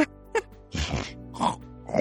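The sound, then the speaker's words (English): A voice imitates Vessel, a trotting animal, snorting: three rough, breathy snorts in quick succession, moderately loud, with short pauses between them. “Vessel snorts right after Faelith had said that she didn't need anything from the cart, was sort of like, darn right.”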